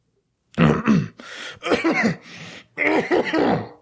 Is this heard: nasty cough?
yes